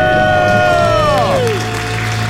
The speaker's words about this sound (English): Good work. Good debt-free scream, guys.